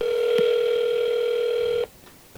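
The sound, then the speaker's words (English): A steady electronic telephone tone of a call placed to a Hy-Vee grocery store in Nebraska hums loudly for nearly two seconds, with a small click early on, then cuts off abruptly into quiet line hiss. “Thank you for calling Carney IV.”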